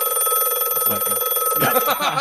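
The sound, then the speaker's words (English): An emergency telephone in a small roadside terminal rings loudly and continuously, a steady, buzzy electronic ring filling the whole moment, with a faint murmur of voices briefly underneath. “And it starts to ring.”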